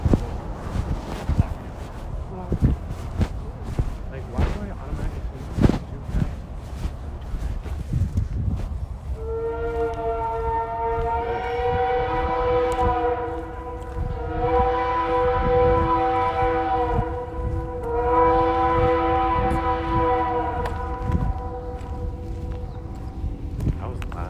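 A passing train clatters along the tracks, then its horn blares three long, loud, sustained blasts in a row over the steady rumble of the rails.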